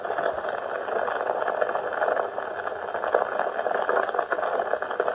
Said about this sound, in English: You can actually hear the bubbles when they fly out of the